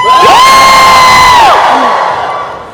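A crowd lets out a loud, sustained "woo" cheer, rising in pitch, holding steady for over a second, then falling off into a noisy, fading roar of voices.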